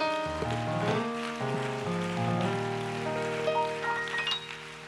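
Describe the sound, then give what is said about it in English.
An audience claps steadily in praise to God during a church service, a dense rain-like patter of many hands, beneath sustained keyboard or organ chords that shift pitch every second or so. No one speaks. “Why don't you put your hands together one more time to the Lord? Give God a hand clap of praise.”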